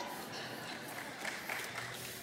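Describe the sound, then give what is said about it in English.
An audience, everybody standing, claps and cheers in a steady, continuous wash of noise, fairly soft, holding at an even level throughout with no single voice standing out. “Let the record state, everybody is standing and cheering.”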